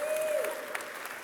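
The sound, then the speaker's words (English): A crowd applauds after a song with dense, steady clapping, a sharp whistle cutting through briefly at the start. The cheering fills the whole short moment at a moderate level. “Rowdy crowd out there.”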